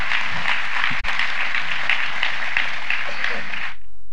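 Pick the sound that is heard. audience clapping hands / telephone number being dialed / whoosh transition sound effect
audience clapping hands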